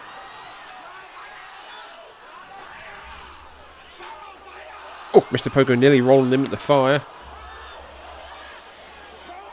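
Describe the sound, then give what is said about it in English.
A full-house wrestling arena crowd cheers and murmurs in a steady, dense roar during a match in which Mr. Pogo chokes Matsunaga with his belt near pits of fire, while a commentator's excited voice breaks in loudly over it for a couple of seconds. “Crowd are loving it here.”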